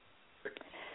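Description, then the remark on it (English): A single quick, muffled sneeze: a short burst of breathy noise that cuts off after a second small catch, with no talking, just faint hiss before and after. “Bless you.”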